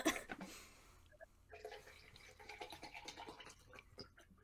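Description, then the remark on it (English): A water bottle being handled: a quick burst of scraping and clinking, then a few seconds of soft rustles, taps and small knocks, all fairly quiet with no talking. “That's my water bottle.”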